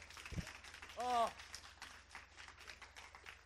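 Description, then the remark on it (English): A crowd claps steadily, a dense crackle of many hands that carries through the whole stretch, with a single voice briefly whooping over it near the start. “Can we give God a big hand for that as well?”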